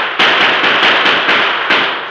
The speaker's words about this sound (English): The outlaws fired as they took cover. The Lone Ranger and Tonto quickly returned their fire.